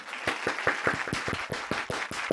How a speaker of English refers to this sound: Good joke. Everybody cheer.